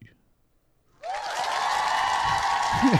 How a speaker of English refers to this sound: They all get applause.